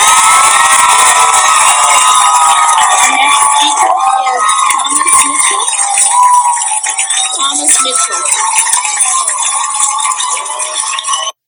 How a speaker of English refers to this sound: And the crowd goes wild. And the crowd goes wild.